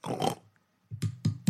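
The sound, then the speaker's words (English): A person imitates a pig grunt: one rough, throaty grunt, a short pause, then three or four quick snorting bursts in a row, fairly loud with no talking. “I kind of want to hear you grunt.”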